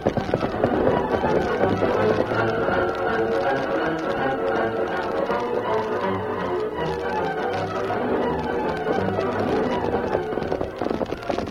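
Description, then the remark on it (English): The horses of the Lone Ranger and Tonto gallop along a wooded path by a road, with a fast, steady drumming of hoofbeats that runs unbroken for the whole stretch, loud and dense, with a sustained tonal layer underneath. “Lone Ranger and Tonto turned their horses upward toward the crest which paralleled the road and rode along a wooded path, checking the terrain as they went.”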